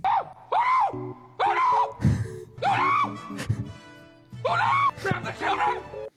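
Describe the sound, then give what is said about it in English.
A voice yells frantic, wordless gibberish in a rapid string of loud, pitch-swooping bursts, with short gasps between them, over a steady low electronic hum, while trying to communicate with a team during a fight. “Literally, when you're in a fight with people, you're literally just screaming gibberish.”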